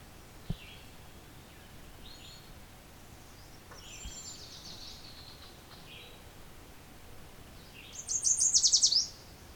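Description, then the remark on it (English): A yellow warbler sings a bright, rapid run of high notes near the end, after a few faint, scattered chirps, with no talking. It is in tall shrubs about 20 feet high beside a pond in a swamp near a road, gleaning bugs from leaves while singing. “Open enough for a yellow warbler.”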